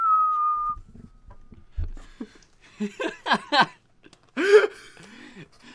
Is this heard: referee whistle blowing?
yes